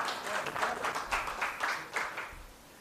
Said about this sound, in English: You can clap for her. It's fine. Just clap for her.